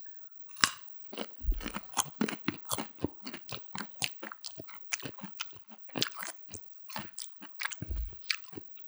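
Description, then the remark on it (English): Loud crunching of raw carrots dipped in ketchup being chewed, a steady run of crisp, wet bites and grinding with occasional low thumps, no talking. “It just tastes like carrots kind of tastes like water. It's just crunchy ketchup.”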